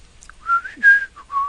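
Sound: someone whistling a melody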